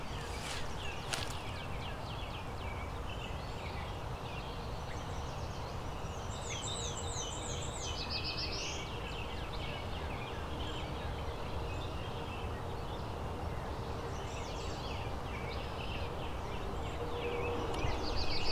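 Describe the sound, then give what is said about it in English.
A black-throated blue warbler sings a fast version of its buzzy song, a short run of quick rising notes over a steady, dense outdoor background hum. “Is the black-throated blue warbler just doing a faster version of its song?”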